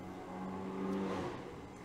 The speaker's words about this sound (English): Waiting for the car to drive by.